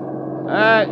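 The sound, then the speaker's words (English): A bus engine drones steadily, then swells into a louder, tonal whine midway as the bus passes by before easing back down. “You in the bus! Stop, will you? Stop!”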